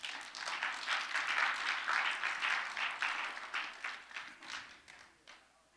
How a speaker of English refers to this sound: Yeah, you can clap. That's fine.